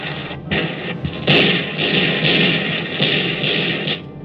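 Rapid, continuous bursts of heavy gunfire crackle loudly and harshly, a dense rattling stream with brief gaps, from the cannons of attacking MiG fighter planes, with no voices.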